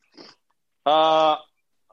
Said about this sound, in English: I heard that little sniffle.